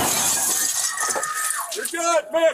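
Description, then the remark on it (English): Window glass shatters in a loud, sustained crash of breaking shards as police break two windows during a search-warrant raid, followed almost at once by a man's raised, shouting voice. “You also heard some glass shattering because the cops broke 2 windows.”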